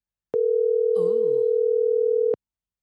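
A telephone ringing tone plays while calling the speaker's mother: one steady, mid-pitched electronic hum lasting about two seconds, with a brief murmured voice passing over it partway through.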